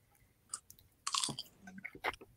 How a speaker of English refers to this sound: God, I'm just polishing this kettle corn.